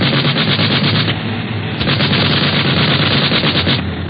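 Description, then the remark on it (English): Rapid, continuous machine gun fire from an airplane nosing down and firing at another plane ahead, a dense rattling burst of sharp shots that stays loud and steady for several seconds with no talking. “Now we'll see how they like a dose of their own medicine.”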